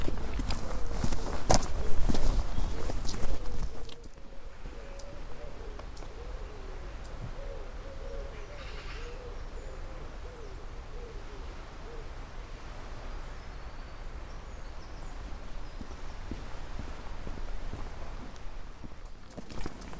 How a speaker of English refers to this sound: That's much better. Left the road behind me and I'm walking along the seawall next to the sea.